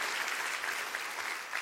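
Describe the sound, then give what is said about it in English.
A church audience claps together in a dense, steady burst of applause, many hands blending into a bright, even wash of sound with no voices standing out. “Can you clap for that?”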